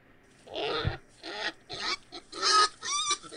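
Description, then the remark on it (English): A stray pig found along Judge Ben Allen Road in Carter County grunts and snorts in a quick series of about five rough, fairly loud bursts, with brief pauses between them and no one talking. “In Carter County, authorities were on the hunt for a pig's owner after it turned up yet again along Judge Ben Allen Road.”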